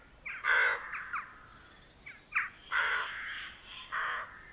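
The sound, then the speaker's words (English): Birds calling from trees outdoors in wet weather: a series of harsh, cawing calls in uneven bursts, with faint high chirps from other birds in the background and no talking. “Birds sat in trees, feathers puffed up to shelter from the wet air.”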